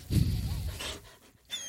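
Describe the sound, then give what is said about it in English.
A voice imitates the dog Patton whining under a door: a low, breathy moan that wavers in pitch, a short pause, then a thin, high-pitched whimper at the end. “This is what she would do under the door, and here's me.”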